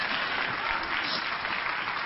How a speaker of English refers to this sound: Somebody ought to clap your hands and praise Him.